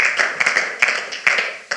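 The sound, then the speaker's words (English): An audience at a church service claps their hands together in praise, giving God a hand clap of praise: a dense, steady patter of many hands with sharper individual claps popping out, lively, with no talking. “In Jesus' name, can we give him a hand clap of praise?”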